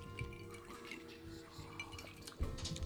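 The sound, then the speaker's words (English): Glasses clink together in a toast to a new home, a bright, sharp tap near the end, amid faint liquid sloshing and pouring sounds. “Well, to your new home. Cheers.”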